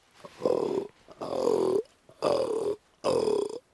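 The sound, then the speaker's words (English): A person imitates a fallow buck's rutting groan: four deep, throaty grunts, each about half a second to a second long, separated by short pauses, loud and rasping. “So should we round off with one last grunt from you?”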